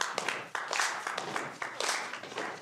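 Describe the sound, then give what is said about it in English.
An audience in a room claps together in rhythm, a dense crackle of many hands with a loose repeating pulse, steady throughout, mixed with rough scraping or rubbing noise made by the rest of the group. “This time, clap.”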